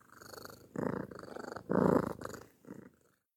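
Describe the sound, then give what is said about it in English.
A cat named Sicily, called Cilia, purrs, a low rumbling purr that swells and eases in rhythmic pulses with each breath, loudest in the middle before trailing off into silence. “And this is my best friend, Cilia. Cilia is the short name for Sicily, but we just call her Ukrainian way, Cilia.”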